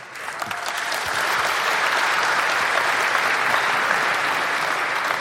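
A live audience applauds steadily, many hands clapping at once in a dense, sustained wash of sound that stays loud and even throughout, with no voices standing out.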